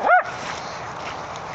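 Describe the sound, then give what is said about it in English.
A short-haired Vizsla dog on a walk gives one sharp, high yip right at the start, fairly loud, then falls silent over a steady outdoor background hiss. “The thing is, he's a Vizsla, so his short hair could be clean before he gets home anyway.”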